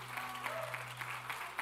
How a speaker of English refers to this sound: Give him a loud clap offering of praise. Thank you, Jesus.